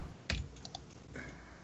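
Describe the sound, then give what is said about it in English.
A die clatters onto a hard surface with one sharp knock, followed by a couple of lighter ticking bounces and a short rattle as it settles, fairly quiet. “I need to roll a die for him.”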